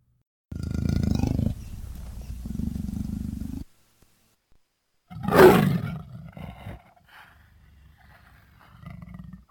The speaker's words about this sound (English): Here, let's try this out. Here is a leopard growl.